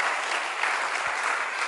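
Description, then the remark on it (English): At a religious gathering, a crowd claps steadily for people as they walk over to have their names written down, the dense, even patter of many hands blending into a continuous wash of applause with no voices standing out. “Clap your hand for them as they go this way.”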